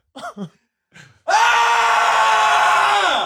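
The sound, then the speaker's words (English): A person lets out a long, full-throated yell at maximum volume, sustained for about two seconds, after a couple of brief short vocal sounds. “How often do you just yell as loud as you possibly can?”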